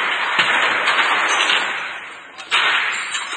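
A heavy metal chain rattles and clatters continuously as it is pulled up by two sides, with a couple of sharper bangs against the box it came out of standing out from the dense, noisy clanking.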